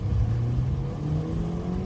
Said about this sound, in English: and I am in my car, driving, hands-free. Don't worry, don't get all in a pinch about how I'm driving.